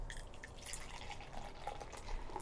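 A black stout beer with a khaki-colored foamy head pours steadily into a glass, a soft continuous gurgle with small bubbly splashes and drips, fairly quiet, with no one talking.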